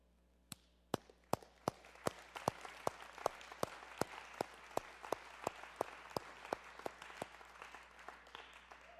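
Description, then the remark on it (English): An audience claps in a steady, even rhythm, sharp slaps landing about twice a second over a constant wash of scattered hand claps, moderately loud and with no voices. “I think he should be applauded for that.”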